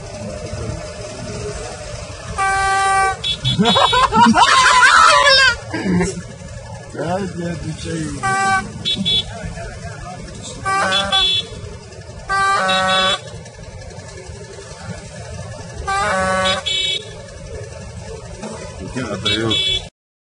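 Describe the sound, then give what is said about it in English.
A car horn, blown by a trained real bear driving a car, honks again and again in short, bright, buzzy blasts at irregular intervals, sounding over a steady background rumble while people talk and exclaim in between. “a bear just knows how to say fuck you and blow a horn and drive a car”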